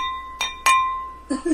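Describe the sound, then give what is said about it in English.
Two bright clinks of wine glasses touching, a quarter second apart, leaving a clear ringing tone that slowly fades; a voice starts speaking just as the ring dies away. “Oh, wait, let me get that sound.”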